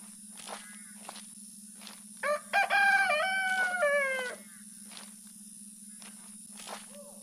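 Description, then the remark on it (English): A voice imitates a rooster's crow, a single drawn-out cock-a-doodle-doo lasting about two seconds, loud, with scattered faint footsteps and clicks before and after. “Making that rooster noise so those monsters would think it was morning.”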